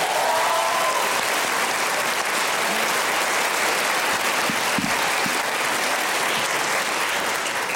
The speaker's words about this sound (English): So let's give her another round of applause, shall we, before we get into it.